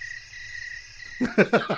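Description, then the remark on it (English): A steady, shrill chorus of crickets chirps continuously in the background, with a few louder, lower-pitched bursts of sound cutting in over it near the end. “Although the crickets do make a beautiful noise in the evening, and it's like being in Spain. Yeah, they chirp.”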